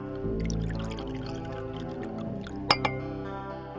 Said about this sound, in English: Let me pour you a glass.